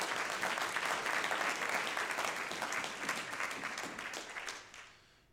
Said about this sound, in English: Oh, somebody clap your hands unto the Lord right now.